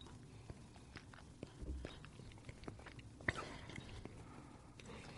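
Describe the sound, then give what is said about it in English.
Quiet wet mouth sounds of someone swishing and chewing a sip of bourbon in the Kentucky Chew manner, with soft irregular clicks and smacks scattered over about five seconds and no talking. “Okay, and that's what basically you take it and you almost chew it in your mouth, and that helps it hit all the different sides of your palate.”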